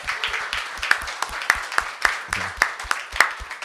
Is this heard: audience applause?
yes